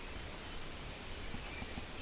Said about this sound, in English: I'm at the graveyard. It's one of our favorite spots where we used to hang out. The sprinklers have just come on.